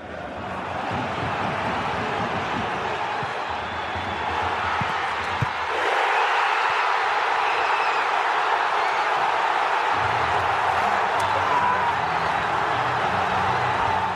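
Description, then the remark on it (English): A packed football stadium crowd of Saarbrücken fans roars in celebration after Marcel Gauss's winning goal in the sixth minute of stoppage time, a loud, dense wall of cheering and shouting that holds steady for the whole stretch, with no one speaking over it. “Now, this is the audio sans commentary, just so you can breathe in that full Saarbrücken crowd.”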